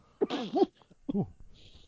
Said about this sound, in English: Ooh. Bless you. No, I cough.